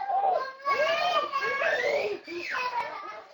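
Young children crying and yelling in high, strained voices, with wailing cries that rise and fall in pitch and overlap almost continuously for a few seconds.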